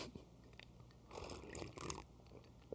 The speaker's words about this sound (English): Sips coffee.